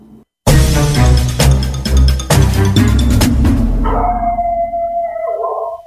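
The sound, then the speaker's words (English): A burst of loud, rough noise gives way to long, wavering wolf howls, a few wolves overlapping near the end in sustained, sliding tones. No one speaks. “other vocalizations, including yipping, barking, growling, and whining.”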